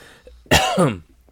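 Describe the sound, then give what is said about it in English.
A single loud cough after doing character voices, harsh and partly voiced, lasting about half a second with quiet before and after. “too many voices making me cough.”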